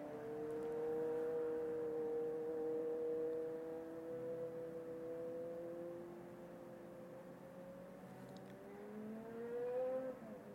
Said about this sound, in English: Just pausing for that car.